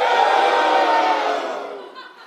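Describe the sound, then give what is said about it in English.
The men of a crowd scream together on cue after a count of one, two, three, with some women's voices still heard among them, a loud sustained roar of many voices that holds steady for about a second and a half, then tapers off. “I definitely still heard some women screaming in that one.”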